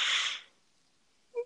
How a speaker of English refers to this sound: Ooh, that was a good yawn.